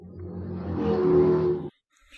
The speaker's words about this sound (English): And a car goes zooming past.